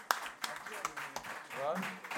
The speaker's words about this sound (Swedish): Applåd och grejer.